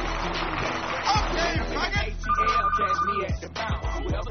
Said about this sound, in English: And the phone line rings again.